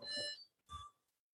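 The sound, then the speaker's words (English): A phone's text message alert plays the Zelda whistle tune: two bright, tonal bursts with clear harmonics, the first held and slightly falling, the second shorter and rising, with no talking. “That was a text message. The Zelda whistle.”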